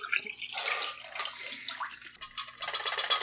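Used film developer liquid is poured out in a steady, splashing stream for a few seconds, fairly loud, with a gurgling, uneven rush like water running into a sink. No one speaks.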